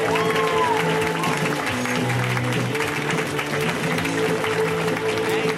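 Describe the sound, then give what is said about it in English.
Dense, steady audience applause welcoming a guest, fills the whole stretch, a thick wash of many hands clapping at an even loudness, with a faint musical tone running underneath. “Give it up for Kurt.”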